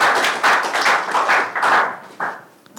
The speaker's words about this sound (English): Oh, clap for Jesus. Amen.